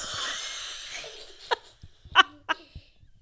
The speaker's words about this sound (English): Sounds like a wet cough. You sure you don't have COVID?